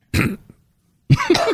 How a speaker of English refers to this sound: Why did you cough after that? Remember that rule of thumb about not putting a Sour Patch in your mouth? Yeah, oh, okay. Is that what you did? Yeah, I shouldn't do that.